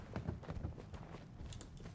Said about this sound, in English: I hear footsteps.